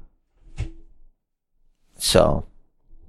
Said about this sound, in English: Ugh, sorry, I'm, like, trying to sit up in my chair and stuff.